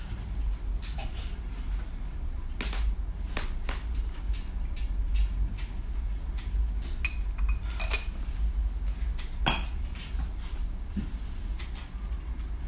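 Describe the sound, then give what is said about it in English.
Light, scattered clinks of a teacup against a saucer and spoon as someone sips tea, irregular taps over a steady low rumble, with no talking. “But I sip my tea if you don't mind.”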